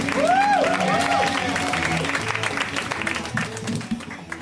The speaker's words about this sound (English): Please put your hands together for Byron Bowers. Clap for your host.